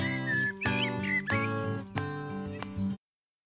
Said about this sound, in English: Do you hear the birds squeaking?